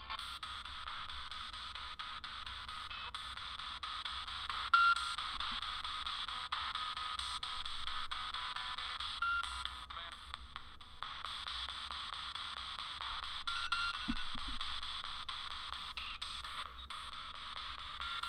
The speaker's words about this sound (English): Okay, I'm hearing a bit of computer-generated interference.